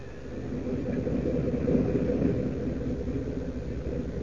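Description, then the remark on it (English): A steady, low droning rumble of the motors of a Japanese submarine, continuous and unbroken, holding at a moderate level with a slight swell midway and no voices. “and then down he goes, skimming close to the water, his cape flicking spray from the towering waves, his ears listening for the telltale rumble of submarine motors.”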